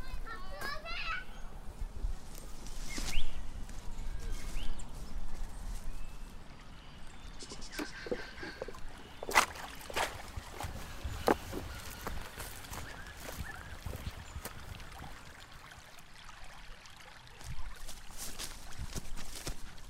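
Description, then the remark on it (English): Steady outdoor water ambience of Campbell's Creek flowing over stones behind a house, with the voices and playful shouts of two children aged 2 and 5 playing at the creek and throwing sticks into it, and occasional splashes or knocks. “I'm just standing down at the creek at the back of my house, Campbell's Creek.”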